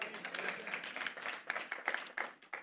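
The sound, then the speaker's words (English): A church audience claps together in a steady, dense wash of applause, with many hands overlapping into a continuous patter, sustained throughout. “Those of you who weren't clapping, your anxiety is getting even higher.”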